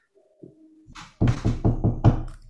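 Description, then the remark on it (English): Five quick knocks on a wooden surface in a steady burst, each a dull, solid thud, preceded by some faint rustling. “Knock on wood.”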